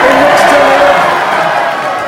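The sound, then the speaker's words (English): A large crowd cheers and roars during a victory speech, answering a patriotic line about Australia: a loud, dense wash of many voices with a few yells poking through, holding steady for about two seconds before easing off slightly. “It's a patriotic line, I think, got almost the biggest cheer of the night, and one that certainly I was in the room.”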